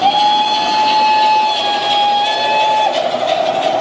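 A vintage steam train's whistle blows one long, steady, shrill note for about three seconds, loud, over the continuous rushing hiss and rumble of the moving engine.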